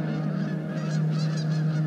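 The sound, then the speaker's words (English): A flock of geese honks repeatedly in quick, overlapping calls, fairly loud, over a steady low hum that runs underneath the whole time. “As she came down and through the sky, the geese saw her and they knew she needed a place to land.”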